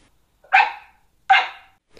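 A dog barks twice, sharp and loud, with a short pause between each bark and the start of a third at the end. No one speaks.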